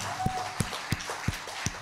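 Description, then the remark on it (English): Five hand claps struck into a microphone at a steady, even pace during a Sunday church service, each one a sharp slap with a boomy low thump, over a faint background hum. “I like clapping with the mic.”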